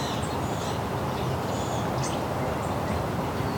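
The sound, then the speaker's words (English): Barn swallows give scattered, high twittering chirps, several brief calls at irregular intervals, over a steady wash of outdoor background noise. “Some barn swallows.”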